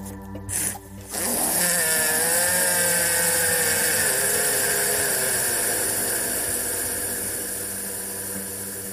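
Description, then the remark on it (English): A loud, drawn-out fart sound effect, a buzzy, rasping blast that wavers in pitch and holds for several seconds before slowly tapering off, after a brief sputtering start. “Power Dog started to giggle a little, as he'd never seen anyone spooked by a toot.”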